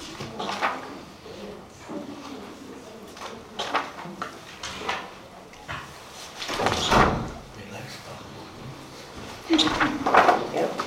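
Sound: door being closed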